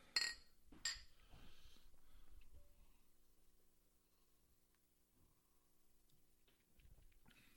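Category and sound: household object, beer glasses clinking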